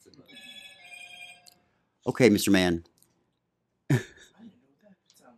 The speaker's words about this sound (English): What is that sound? Is that your phone? Okay, so we've had your phone go off today.